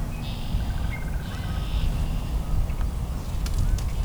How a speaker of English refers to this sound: So this red-winged blackbird is up a willow tree in the middle of a marshland here. This is all cattail marsh.